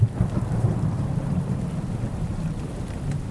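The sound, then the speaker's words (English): Steady rain falls at night on the Civil War battlefield near Shiloh Church, with a deep, continuous rumble of thunder rolling underneath, a dense low-heavy wash of storm sound with no voices. “Everyone else, whether in gray or blue, spends a miserable night in the rain.”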